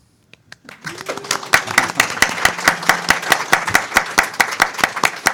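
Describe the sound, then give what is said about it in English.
A small audience breaks into applause for guest Peter Straub as he is introduced, starting with a few scattered claps and swelling into steady, rhythmic clapping with some crowd murmur underneath. “That was semi-spontaneous applause.”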